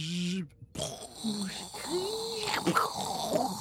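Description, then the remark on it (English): A voice imitates a spaceship exploding in a cloud of debris and fire with a string of growling, rumbling vocal noises and a brief pause, ending in a harsher, hissing burst of breath. “You can't speak in space, but just in case you wanted some extra sound effects for your explosion.”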